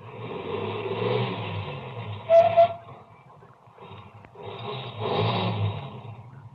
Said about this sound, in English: I pulled up and stopped. Ahead, the car that passed me slowed down, and it also stopped. Then turned around and came back toward me.